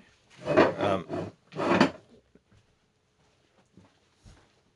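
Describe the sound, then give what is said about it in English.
The back door is rattled and jostled in four loud, quick bursts as someone works the handle trying to get in, followed by a few faint scattered knocks and clicks. “Oop, you want to get the back door? Someone's trying to get in.”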